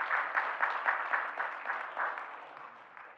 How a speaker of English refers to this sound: Yeah, that's worth a clap. It is. It is.